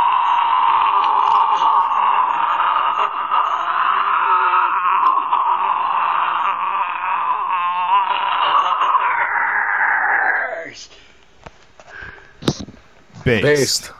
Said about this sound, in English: This is him defeating …'s 18 second scream.